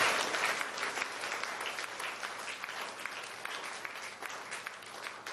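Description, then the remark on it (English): A large crowd applauds steadily, many hands clapping at once in a dense, continuous wash of sound that stays fairly even for several seconds before easing slightly. “Okay, clap your hands.”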